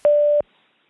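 A single steady electronic beep, the Clubby Boys Clubcast virtual voicemail system's tone signaling recording has begun, sounding clearly for about a third of a second before cutting off to near silence.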